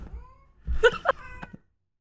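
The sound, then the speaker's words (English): A female cat in heat yowls in a few drawn-out, wavering cries lasting about a second and a half, fairly loud, with a low rumble underneath and no talking. “And she's just going around like, no, there's no male cats here that are going to do anything to you.”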